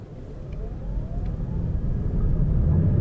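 A hybrid car pulls away quietly in traffic, a faint rising electric whine over a low road rumble, then the engine cuts in and the steady drone grows louder toward the end.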